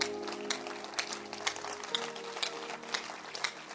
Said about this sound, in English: Clap your hands. Please stand to your feet and clap your hands.